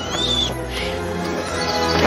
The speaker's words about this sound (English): Bloody birds of menace.